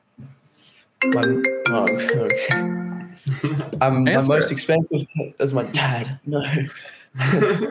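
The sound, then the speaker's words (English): A phone ringtone plays a loud, steady melodic tone for about two seconds, then stops as a person starts talking. “My phone on sleep. I can't do my laptop anymore.”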